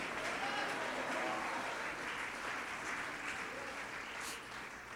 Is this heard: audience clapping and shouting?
yes